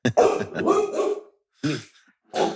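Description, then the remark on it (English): A female dog barks in three loud bursts: a long, rough run of barks, then a brief pause, a single short bark, and another bark starting just as it ends. “We interrupt this program with a dog wanting to speak.”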